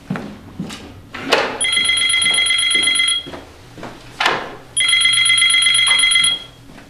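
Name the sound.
telephone bell ringing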